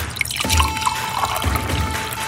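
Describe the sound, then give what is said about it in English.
Gin is poured steadily in a hefty pour for a couple of seconds, a continuous splashing trickle with a faint rising tone as the container fills, no talking over it. “That was a very hefty pour of gin.”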